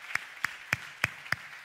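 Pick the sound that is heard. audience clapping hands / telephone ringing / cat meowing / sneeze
audience clapping hands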